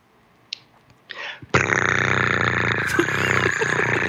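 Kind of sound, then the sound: vocal imitation, person imitating a cat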